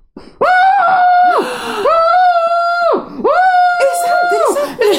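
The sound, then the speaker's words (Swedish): A voice imitates muffled screaming with the head lying face-down in a pillow: three long, loud, strained wails in a row, each held for about a second with short breaths between, sustained. “Ja, inte att jag skriker, utan att min man ligger med huvudet ner i kudden och skriker så.”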